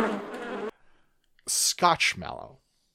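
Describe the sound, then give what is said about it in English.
A dense, steady buzz like bees droning for under a second, then a pause and a few short bursts of voices and breathy sounds. “This is a box like of bees.”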